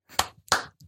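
Two sharp hand claps made to summon someone to bring the mail, about a third of a second apart, loud and crisp, with a faint trailing tap afterward, no voices over them.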